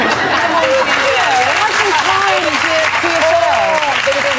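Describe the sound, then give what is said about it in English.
Loud, sustained audience applause fills the whole stretch, a dense steady clatter of clapping with voices talking and calling out over it, one woman repeatedly asking, can we go to the Maldives? “if you can hear under the applause, just keep saying, can we go to the Maldives?”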